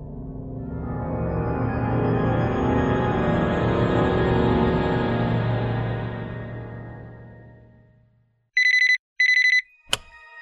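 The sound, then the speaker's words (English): A low, rich droning swell rises and fades away, then a telephone rings in two short, bright electronic bursts, followed by a sharp click. “would you pass me my phone?”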